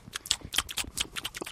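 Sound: people chewing food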